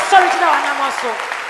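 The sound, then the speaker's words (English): An audience claps hands for the Lord in a steady, dense patter that fills the whole moment, with a voice speaking or calling out over the clapping throughout. “Clap your hands for the Lord and stand to your feet.”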